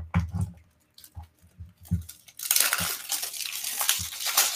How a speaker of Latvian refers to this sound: Tad, es domāju, rausim vaļā to iepakojumu, lai neatspītu, mēs varam patīt, kas uz kastītes tur rakstīts īsti ir. Tātad, taisam viņu vaļā.